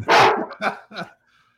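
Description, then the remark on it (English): A neutered dog wearing a cone collar barks three times, a loud drawn-out bark followed by two shorter ones, then silence. No one speaks. “The dog has the cone of shame on.”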